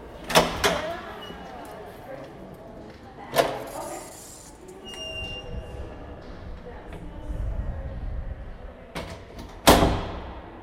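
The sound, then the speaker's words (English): A heavy, unassuming basement door unlatches and opens, with sharp clunks of the latch, a brief squeaky hinge creak, and a low rumbling drag, ending in a final loud knock as it settles. “Downwards, past flights of stone stairs that have literally been worn down by generations of feet, there lies an unassuming door in the basement.”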